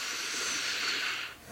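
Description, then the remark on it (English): A long, steady deep breath with an airy hiss, taken while sitting up tall with the belly held in as a guided breathing exercise, holding evenly for over a second before trailing off quickly. No one speaks. “Yeah, so if you're sitting, sit up nice and tall, hold your belly in, take a deep breath.”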